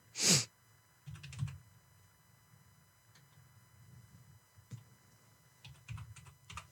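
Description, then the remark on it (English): Typing on a computer keyboard: one sharp, loud keystroke opens, followed by softer, irregular clusters of clicking keys over a low background hum, with no one speaking. “Damn, I wasn't typing.”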